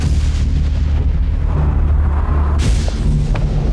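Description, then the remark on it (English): A thunderstorm rumbles with a steady, heavy low roar, and a sharp crack of thunder bursts out partway through before the deep rumbling rolls on. No one speaks. “Young lady, you can't go out in that storm.”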